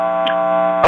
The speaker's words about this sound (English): You'll have to turn off your radio if I'm getting interference. All right, I'm getting some interference.